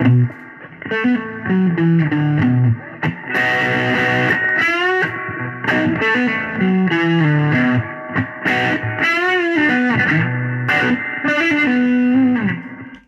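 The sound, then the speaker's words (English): An electric guitar played through a Deluxe Reverb amp with a delay plays a continuous melodic line of sustained notes and bends, with a slightly overdriven amp tone and echoing repeats trailing behind, loud with no talking. “Now the difference on this one, the deluxe reverb, is that Owens has a delay.”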